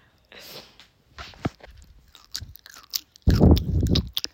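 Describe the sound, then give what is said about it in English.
Wet chewing of chocolate-infused gum, with irregular smacking and crunchy bursts in short bouts, ending in a louder, sustained stretch of mouth noise. “take the chewing gum out.”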